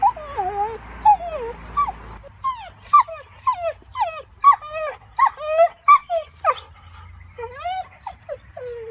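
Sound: dog whimpering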